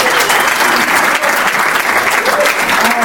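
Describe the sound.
A room full of people applauds steadily, a dense wash of clapping at fairly loud, even volume from start to finish, with a faint murmur of voices underneath.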